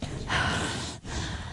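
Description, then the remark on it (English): Heavy breathing rushes into a microphone in two broad, noisy breaths, a long airy exhale followed by a short pause and another breath, with no talking. “Who is breathing into the microphone so heavily?”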